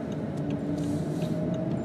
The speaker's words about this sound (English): If that police car would slip out of my way or go past me